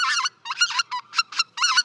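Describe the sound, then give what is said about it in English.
A single white-fronted goose, isolated from a flock, gives a run of bright, yelping calls in quick two- and three-note bursts, clear against a quiet background, with brief gaps between the phrases. “Two or three note sort of yelp, and you can hear the individual bird there.”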